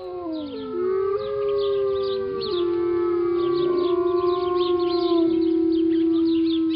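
A pack of wolves howls in chorus, several long, wavering tones overlapping and sliding in pitch, steady and fairly loud throughout with no talking.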